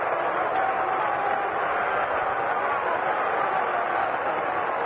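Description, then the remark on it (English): A large baseball stadium crowd roars and murmurs in a dense, steady wash of noise, reacting as Yankees batter Bobby Mercer comes up to bat; it holds at an even loudness for the whole stretch, with no clear individual voices. “Listen to the crowd. Listen to them.”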